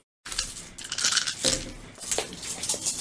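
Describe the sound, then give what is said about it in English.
A handful of dice, rolled for a strength check, rattling and clattering together in a steady stream of sharp little clicks for about three seconds, with a few louder bursts, and no one speaking. “That's a lot of dice.”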